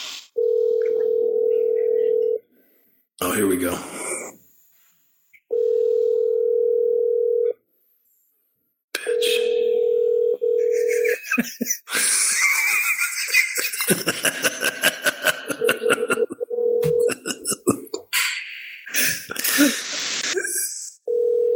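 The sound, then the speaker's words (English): A telephone ringback tone, as someone calls a woman again, repeats in steady, evenly spaced pulses, about two seconds each, before voicemail, with muffled talking and rustling between them and then a busier stretch of voices and noise over the later rings. “Let me fucking call her again.”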